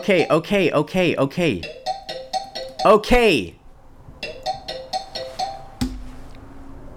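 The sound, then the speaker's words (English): A 30-minute timer runs out with an alarm chime that plays a loud, bright repeating pattern of high electronic pings, with a voice speaking over the first few seconds before the chime continues alone and stops abruptly. “The timer ran out.”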